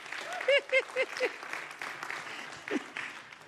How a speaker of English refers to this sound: Come on, women, give yourselves a hand clap.